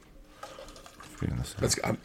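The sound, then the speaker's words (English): Beer pours steadily into cups, a gurgling, splashing flow that builds in the second half while people chatter. “That's a heavy pour.”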